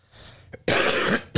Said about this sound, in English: Sorry. I don't have a cough button over here. So it's like, what the hell?